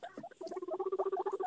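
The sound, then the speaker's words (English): A guinea pig squeaks in a rapid string of short, high chirps, pulsing steadily and growing louder after a brief softer start, with no talking over it. “I mean, I have guinea pigs, too.”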